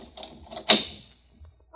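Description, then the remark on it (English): A single sharp clunk rings out as one of three locks on a store door is turned, then quickly fades, with faint murmuring voices and quiet shuffling before and after. “Turn the locks. Yeah, door don't open. Three locks in the store.”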